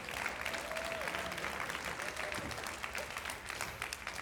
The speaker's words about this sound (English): Yeah, you can give the Lord a round of applause for that.